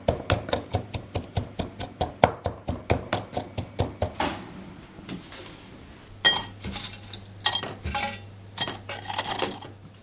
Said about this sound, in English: I'm just going to give it the taste of the garlic, but not even to crush the garlic in your teeth. Now I'm smashing the garlic.